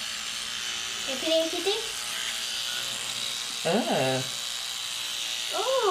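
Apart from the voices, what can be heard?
electric toothbrush buzzing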